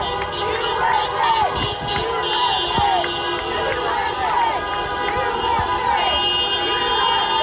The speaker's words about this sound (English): Huntington Beach, California. Look at the size of this crowd. It kind of pans a little bit. I don't know how many people are there, but that's a lot.